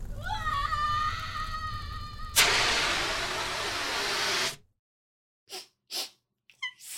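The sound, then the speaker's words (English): A rising, growly creature roar gives way to a loud, sustained rush of dragon fire breath lasting about two seconds, then a pause and a few short, sharp coughs. “I'm still getting a hang of my fire breathing.”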